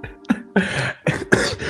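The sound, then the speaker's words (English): A fairly loud fit of coughing: several harsh bursts in quick succession, with a short one first and then three longer, rasping coughs, and no talking. “See? I'm coughing, excuse me.”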